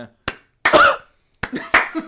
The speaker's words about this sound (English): he coughs in the crowd. And Jose, who coughed?